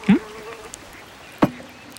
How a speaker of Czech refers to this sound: Chvilku je ticho, jen zvuky šálků, talířků, příborů a tak dále.